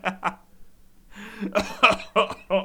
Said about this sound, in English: Oh, no. Excuse my coughing.